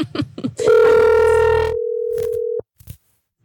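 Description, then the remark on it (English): An outgoing phone call rings: one steady, mid-pitched ringback tone holds for about two seconds, then cuts off, with a few short clicks and rustles before and after. “I'm going to call him as if he was talking to me about a truck.”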